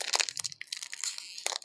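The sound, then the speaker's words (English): A snack bag crinkles and crackles as it's pulled and torn open, a busy run of sharp, bright rustling bursts with no voices. “Why are these so hard to open?”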